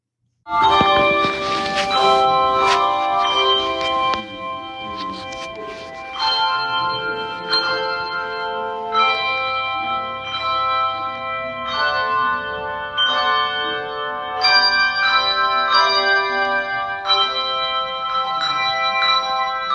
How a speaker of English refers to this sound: each person holds a bell, two bells actually, and they are correspond. They're built to a note. And they don't quite get the whole pentatonic scale, but you're going to get the drift of it when you listen to it. So here we have bell choir rehearsal.